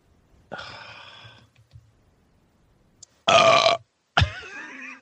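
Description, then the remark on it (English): Three wet burps with short pauses between them: a drawn-out, moderate first belch, then two louder, rougher ones near the end, with no talking. “I'll fill the silence with my burps.”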